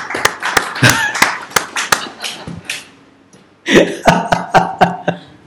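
A small audience claps for the Hindu religion in scattered, uneven bursts, with sharp individual hand claps rather than dense applause. The clapping stops briefly, then picks up again over faint background murmur.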